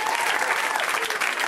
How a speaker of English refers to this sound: But they can probably hear you if you want to welcome them with your applause. You can do that, too.